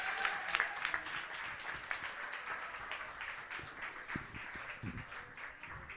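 Audience applause for a contestant's poem score, continuing as the next contestant comes up: a dense, steady wash of many hands clapping at an even loudness throughout, with a few brief low thumps or voices mixed into the crowd noise.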